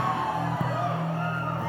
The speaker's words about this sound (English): Somebody is asking, why are they always shouting?